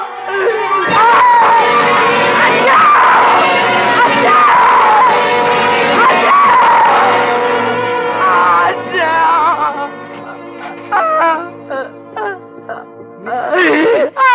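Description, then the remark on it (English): A burning woman in pain screams and wails loudly and continuously, her voice rising and falling in long anguished cries, then breaking into shorter, sobbing bursts near the end. “You mustn't scream like that. I wasn't screaming. That was my sister”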